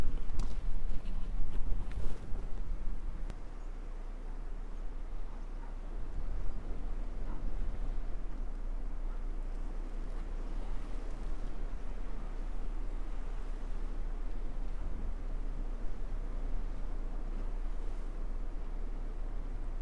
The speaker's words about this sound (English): I've now reached Portland Bill and I'm overlooking Pulpit Rock. Never seen the place so quiet. Still been accompanied by swallows, but it's not been as many as yesterday. This is what Portland Bill sounds like on this calm day.